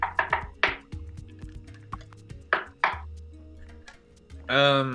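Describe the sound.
Soft knocking on a door: a quick cluster of three or four light raps, a pause, then two more taps, followed by a short burst of voice at the end.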